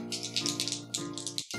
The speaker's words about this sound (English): I don't know why I'm rolling two dice. And dropping another one on the floor. You know, the best rolls always happen on the floor because you can't use them.